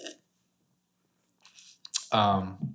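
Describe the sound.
A wet slurping sip of beer in a few noisy bursts, followed right after by a short voiced sigh, with quiet moments before it.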